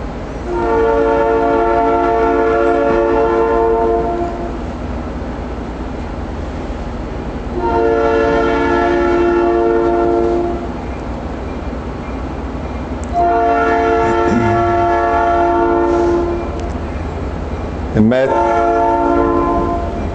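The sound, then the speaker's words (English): A train horn sounds four long, loud blasts separated by short pauses, the last one cut short, over a steady low rumble of rail noise. “In Matthew 13, it went from three whistle blows to five today.”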